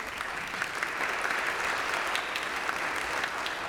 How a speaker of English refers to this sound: That was some very nice golf applause. I'm very impressed. It was well done.